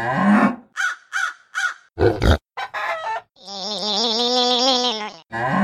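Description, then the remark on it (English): A voice imitates animal noises: a run of short, rhythmic grunting croaks, then a harsh burst and a long, strained, wavering croak, all loud with brief gaps and no words. “And again he tried, and the grunts and the croaks came out.”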